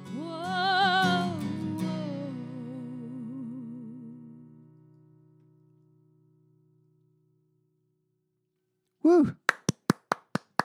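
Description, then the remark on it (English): A sustained sung melody trails off into silence, then one person claps alone: about eight sharp, crisp hand claps in a quick, steady rhythm. “Always like to give at least one silo clap during the show.”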